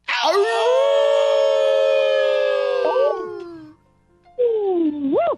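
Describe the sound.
A man in Virginia imitates a wolf howl: one long, loud, sustained howl that slides downward at the end, a brief pause, then a shorter howl that swoops upward, with no talking.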